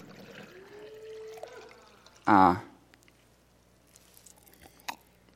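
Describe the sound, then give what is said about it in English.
Tap water from the kitchen is poured into a container, its pitch rising gently as it fills, followed by a brief, loud burst of noise and then quiet room sound with faint clicks. “It's still just water. Still just tap water from the kitchen.”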